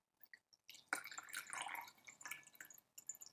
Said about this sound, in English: And I think it's almost time to pour out hot brew. So this tea is meant to be cold brewed, but you can also prepare it hot.